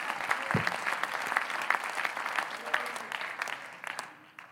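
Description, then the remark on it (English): An audience gives the Lord a hand clap of praise in a morning service, clapping together in sustained, dense applause, steady and fairly loud for several seconds before thinning and fading out at the end. “Would you give the Lord a hand clap of praise this morning and bless his name?”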